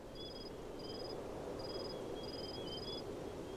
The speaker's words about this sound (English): Imagine you're out in nature. You hear crickets.